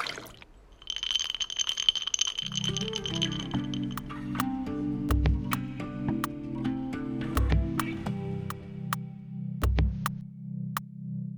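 Ice cubes clink sharply against a glass, followed by a steady gurgling pour of liquid. Scattered bright clinks and a few soft thuds continue over the pour, fairly loud, with no talking.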